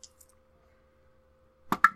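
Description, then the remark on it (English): Two eight-sided dice (2d8) rattle and land with two sharp, hard clacks in quick succession near the end, preceded by a couple of faint ticks and mostly quiet. No one speaks. “He can make a con save for me, please, while I roll 2d8.”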